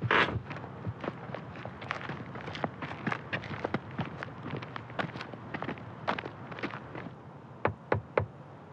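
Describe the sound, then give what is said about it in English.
Steady footsteps and light scuffing lead up to three soft knocks on a door near the end, fairly quiet, with no one speaking. “That was kind of soft.”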